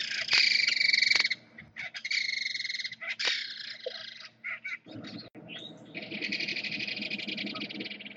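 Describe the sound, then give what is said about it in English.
A belted kingfisher's loud, dry rattling call comes in rapid bursts, a harsh clattering series that repeats several times and ends in a longer sustained rattle, with no one talking. “They have a sharp, rattling call and a mohawk-looking collection of feathers on their head to back it up.”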